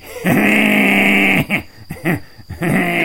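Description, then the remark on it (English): A human voice imitates a howl at the moon: one long, steady, strained vocal tone held for over a second, then a string of choppy, wavering bursts that break up into laugh-like pulses. “But what I'm going to do is I'm going to howl at the moon.”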